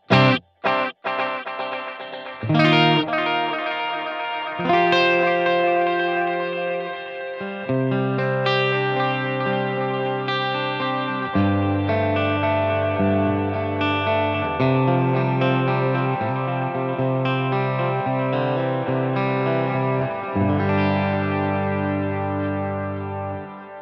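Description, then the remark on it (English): An effected electric guitar with its tone control turned up a bit plays sustained, shimmering chords with a bright, slightly distorted tone and chorus-like wobble, opening with a few sharp plucks before ringing steadily and loudly, with no voices. “We turn the tone control up a bit.”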